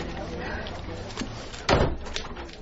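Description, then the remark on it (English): A key rattles faintly in the lock of the front door of number 23, then the door unlatches with a sharp clack and swings open against a low, steady indoor background. “Now, this looks like the front door key. There we go. Coming in.”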